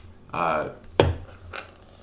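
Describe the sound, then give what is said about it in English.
A single sharp, bright clink of glasses touching for a cheers as a beer, The Truth, an Imperial IPA by Flying Dog, is opened, preceded by a short voiced sound and followed by a faint softer rustle. “So I picked this out, and let's crack it open and take a sip. But I'll, so cheers.”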